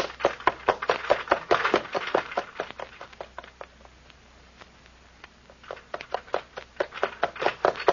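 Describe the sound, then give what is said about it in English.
Rapid hoofbeats of horses pulling a fast carriage along a road toward the hills, a quick, steady clatter of sharp knocks that eases off briefly midway before picking up again at full pace. No voices. “Monkton, don't drive so fast. You'll kill the horses.”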